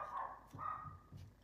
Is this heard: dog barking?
yes